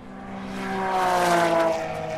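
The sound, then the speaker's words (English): A Porsche 911 race car roars past, its steady engine whine swelling to a peak midway and then easing off as it moves away, with no voices. “And another 911.”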